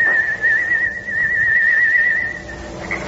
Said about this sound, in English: Suddenly, the shadowed outline of a human figure appeared at the edge of a cypress grove behind the weather-beaten Horton house, and a soft, whistled signal rides the still night air.